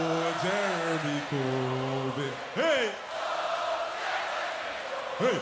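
A huge festival crowd at Glastonbury on June 27th, 2017, sings along in unison, holding long loud notes and swooping up and down on a short repeated chant-like phrase over a wash of crowd noise.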